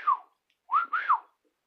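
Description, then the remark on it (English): A person whistles a few short tonal notes: one falling note, a pause, then a quick rising-and-falling pair. Fairly soft, with no talking. “What about whistling?”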